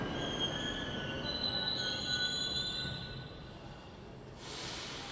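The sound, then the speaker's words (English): A Tashkent Metro train rolls along underground rails with a steady low rumble and thin, high-pitched wheel squeals drifting above it, easing off near the end. “This is our train.”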